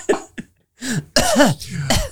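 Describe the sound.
A voice imitates the harsh, hacking cough of someone with tuberculosis: a couple of short barks, then a pause and a longer series of rough, wheezy, strained coughs, loud.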